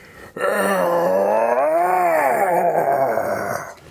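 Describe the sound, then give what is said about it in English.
A single sustained, growling roar voiced by a person as the character Frenzy, roaring as he plucks Air Raid out of the sky in one gigantic hand; about three seconds long, with a rising-then-falling pitch contour and a rough, strained tone, loud and alone. “Frenzy roars, plucking Air Raid out of the sky to snatch him in one gigantic hand.”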